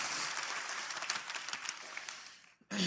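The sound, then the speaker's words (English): An audience applauds steadily to thank the band, a dense wash of many hands clapping with scattered sharper claps, fading out near the end before a brief voice breaks in. “Was that applause?”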